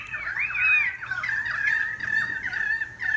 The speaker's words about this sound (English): I love the sound of caroling currawongs.